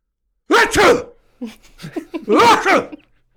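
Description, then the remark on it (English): A person loudly imitates a sneeze with their voice, two explosive bursts at the start, a softer breathy build-up in the middle, then another forceful sneeze-like blast, alone. “Because both of you are so game in imitating sneezes, I will tell you that I have a sneeze that can be extremely disruptive, as my own wife has told me many a time.”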